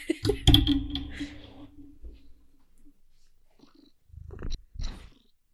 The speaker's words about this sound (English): That's some good ASMR. A little more cat ASMR.